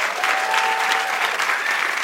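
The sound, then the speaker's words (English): Steady audience applause for the evening's guests before a vote, a dense wash of many hands clapping at a constant, fairly loud level throughout, with no talking over it. “So before we vote, how about one more hand, please?”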